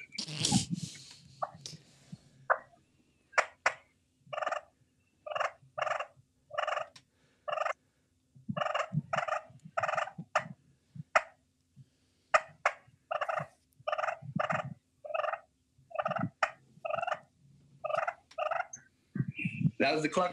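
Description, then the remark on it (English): A loud sequence of turkey calling made on a turkey call: sharp clucks opening, then a long run of rapid, rattling gobble bursts repeating steadily for about twenty seconds, with no talking. “That was the clucking first.”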